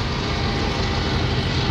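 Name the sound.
train passing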